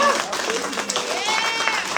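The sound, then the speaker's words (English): A crowd applauds a panel at a forum at the Happy Dog, part of the City Club Community Series. A steady, dense wash of clapping with excited cheers and whoops rising over it, lively and lasting the whole moment without a break. “Clap it up. Woo! Give it up for this panel.”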